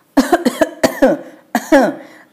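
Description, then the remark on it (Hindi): A woman coughs in a harsh, hacking fit in a kitchen filling with smoke from the stove she is blowing on: several quick coughs in a row, a brief pause, then two more strained coughs with a raspy, voiced tail. “खांसते हुए माँ बोली, वे सब यात्रा पर जा रहे हैं।”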